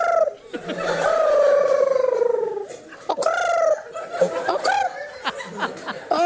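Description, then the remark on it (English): A person imitates a cold New York City pigeon's trilling coo: a long, rolling, warbled call that slides downward, followed by a few shorter throaty coos with chuckling in between. “You know, it's like a cold pigeon.”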